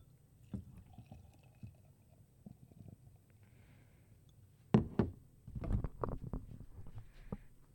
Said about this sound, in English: Can you guys hear the sound of the beer bubbles? I could, but I'm right here next to it.